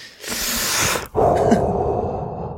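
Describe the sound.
A voice imitates heavy, mechanical-sounding breathing: one long raspy inhale, a brief pause, then a longer hoarse exhale with a low rumble, Darth Vader style.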